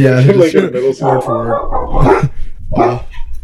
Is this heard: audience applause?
no